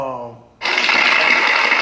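An applause sound effect played from a soundboard: a brief voice gives way to a sudden burst of dense crowd applause, a loud, steady wash of many hands clapping that holds without fading until the end.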